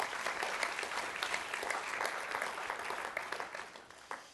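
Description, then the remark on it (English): An audience claps steadily, a dense wash of many hands that holds evenly for several seconds before slowly thinning out, with a few louder claps standing out near the end. “That might be an appropriate place to clap right there.”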